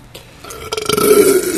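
A single drawn-out burp swells in loudness and rumbles on for over a second, prominent with no talking over it.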